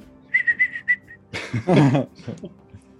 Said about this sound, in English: Whistle Dixie for me, tough guy.